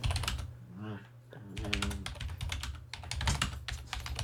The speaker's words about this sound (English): What are you typing? I'm messaging Ty Bollinger.